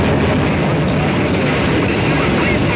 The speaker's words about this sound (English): because the train is picking up speed and we are heading, it seems to be, out of control. As we're heading down to the monkey cages, as I told you before, we're heading out of control, it seems to be. I've never seen a train pick up this much speed.